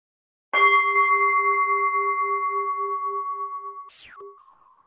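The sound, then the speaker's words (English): A meditation bell is struck once to set the tone for a meditation session and rings out clearly with a long, shimmering, gently pulsing tone that fades slowly before ending in a brief scrape near the end. No one speaks. “And it's up to you to, you know, if you want to take a formal posture, I'm going to ring the bell because I always, you know, that there's some love in the sound of the bell for meditators to sort of set the tone.”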